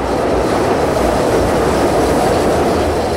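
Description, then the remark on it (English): A loud elevated CTA L train in Chicago roars past, a continuous heavy rumble and metallic rattle of wheels on track that fills the whole stretch without letting up, with no one speaking. “What it's like to live next to the CTA's L train tracks.”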